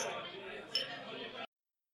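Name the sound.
glasses clinking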